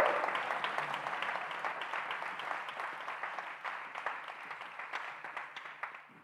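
A crowd claps steadily for several seconds, a dense wash of many hands with faint individual claps poking through, slowly thinning and fading toward the end. Nobody speaks.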